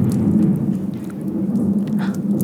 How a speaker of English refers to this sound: There's thunder. There's going to be a thunderstorm tonight.